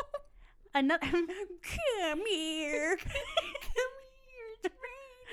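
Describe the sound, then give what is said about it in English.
A person's voice imitates a cat beckoning someone, meowing several times in a row with drawn-out gliding mews, fairly loud and sometimes whiny, with short breaks between them. “How does a cat beckon you? Just like nuzzle you? Meow. Meow, come here. It's like meow, meow, meow.”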